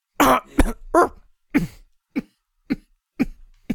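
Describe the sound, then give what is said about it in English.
A run of about eight harsh, barking coughs, loud at first, then shorter and weaker, spaced by brief pauses with no talking. The coughs are from Kimmin, a game character with a ruined throat, who goes spilling to the ground. “As Kimmin like goes spilling to the ground and coughing, his ruined throat barks a couple times.”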